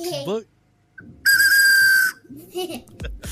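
A girl gives one steady, shrill blast on a toy whistle lasting about a second, between bits of excited voices and a short thump at the end.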